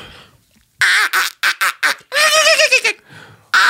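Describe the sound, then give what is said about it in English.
A person uses a squawk call to imitate a harsh squawking bird call, loud: a quick run of choppy, duck-like squawks followed by a longer drawn-out raspy cry, then a brief final squawk. “I got a squawk call. I can do that.”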